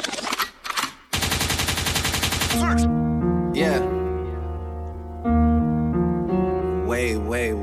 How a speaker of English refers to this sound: I got Lakewood means rewind, a gunshot means forward.